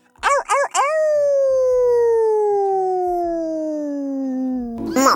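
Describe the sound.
A person imitates a wolf howl: two quick yips, then one long, loud, drawn-out howl that slowly slides downward in pitch for about four seconds before breaking off.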